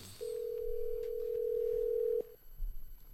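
A single steady telephone tone hums for about two seconds, like a ringback or dial tone on a phone line as a call is placed, then cuts off, leaving faint background noise.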